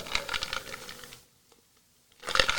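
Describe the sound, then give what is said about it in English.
A coffee mug clunks and knocks against a microphone as someone takes a sip of coffee, a rapid cluster of rattling bumps, then a brief silence before another burst of sharp knocks. No one speaks. “Fucking hit my mic and everything.”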